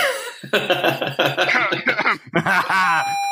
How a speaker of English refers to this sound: Sorry, I started coughing.